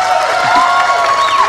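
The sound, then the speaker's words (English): An audience cheers and applauds with pride at the mention of Philadelphia, Pennsylvania, a dense, steady roar of many voices whooping over continuous clapping, loud from start to finish with no one speaking. “You're cheering and applauding because you're proud.”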